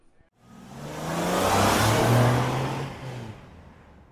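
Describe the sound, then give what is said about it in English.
Single-seater racing cars roar past on the track at Brands Hatch, their high-revving engines swelling to a loud peak and then fading off over a few seconds. “Now, before this pesky single seaters come back, I shall say congratulations.”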